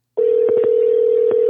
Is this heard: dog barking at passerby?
no